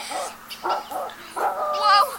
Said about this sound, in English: Whoa! Nice doggy! Nice doggy! Nice doggy!